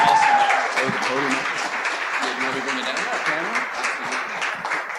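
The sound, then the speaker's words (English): A large church audience claps steadily and loudly for several seconds, applauding Jesus, a dense wash of applause with scattered voices calling out underneath. “Well, thank you so much for applauding Jesus.”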